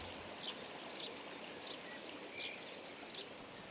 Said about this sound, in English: So this is the actual main river, isn't it? This is the Sidling, yep. The Sidling water. Yep. Which goes into the Froom, eventually.